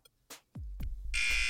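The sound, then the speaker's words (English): A few dull thuds and knocks, then a loud, harsh electronic buzzer blares abruptly at the end and holds steady, with no one talking. “Wow, all of that before the buzzer.”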